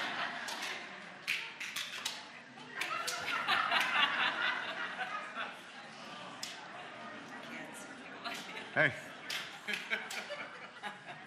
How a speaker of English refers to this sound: This sounds like my sense of rhythm in here. That's how I clap.